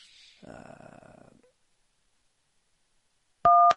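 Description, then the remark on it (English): A single loud, steady dual-pitched Skype call dialing tone sounds briefly at the very end, following a stretch of muffled rustling noise and a pause of near silence. “It's just not letting me add a phone call.”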